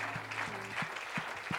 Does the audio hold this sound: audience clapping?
yes